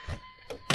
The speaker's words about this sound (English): You just open the door.